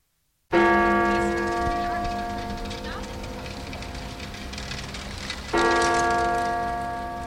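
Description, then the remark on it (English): The bells of the Westerkerk church in Amsterdam toll the hour: a large bell strikes twice, about five seconds apart, each deep resonant stroke ringing out and slowly fading over a steady hiss of outdoor background noise. “The bells of Amsterdam's Westerkerk told another hour passed.”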